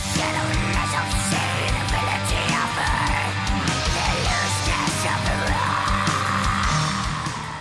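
Raspy, mid-range, goblin-like black metal vocals howl over dense, loud metal instrumentation with pounding drums, the harsh screeching continuing steadily throughout.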